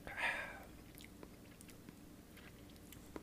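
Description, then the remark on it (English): A short slurping sip of rye whiskey right at the start, taken while tasting it, followed by near silence broken only by a few faint mouth clicks and small swallowing sounds. No one speaks. “On my first sip, I get some noticeable heat and that immediate rye forward spice.”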